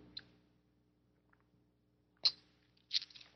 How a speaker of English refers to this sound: And take a sip of my tea here.